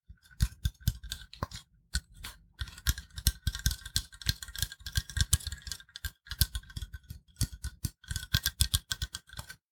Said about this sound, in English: So I think what would be quite nice to start with is some cleaning solution that I have in this spray bottle.